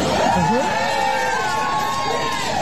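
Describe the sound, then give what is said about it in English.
A large crowd cheers and shouts excitedly, waiting for a man to speak on stage, a dense, continuous roar of overlapping voices with whoops rising and falling throughout, loud. “See, the crowd's kind of excited to hear him speak.”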